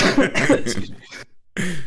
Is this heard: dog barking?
no